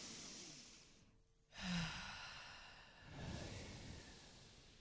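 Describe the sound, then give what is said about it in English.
A slow, deep breath drawn in through the mouth, then a long, audible exhale with no talking, followed by a second softer breathy release. “Well, let's all take a deep breath together.”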